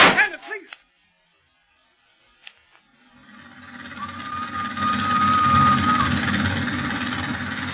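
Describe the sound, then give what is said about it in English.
A short burst of voices and a sharp knock, a pause, then the steady rumble of a moving train bound for Leopoldville swells in and holds, heavy and continuous, with a thin whining tone briefly riding above it. “won't this train ever get to Leopoldville?”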